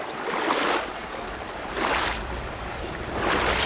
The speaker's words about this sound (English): Stepping into the cold river, he carefully makes his way across. The river is about knee-deep, but he is content as the water passes by him.